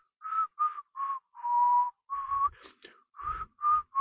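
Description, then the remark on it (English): Someone whistles a short, bouncy tune of clipped notes and one longer held tone, clear, with a few soft thumps and rustles partway through. “Like whistling.”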